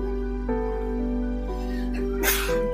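A single short, sharp sneeze bursts out near the end, over a steady humming musical tone that shifts pitch every half second or so.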